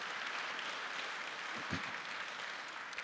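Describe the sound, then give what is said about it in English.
The audience of First Baptist Church Brunswick applauds steadily to welcome four families who joined the church, the dense patter of many hands clapping together at an even level for a few seconds, with a faint voice briefly audible underneath. “Give a hand clap of praise for those four families.”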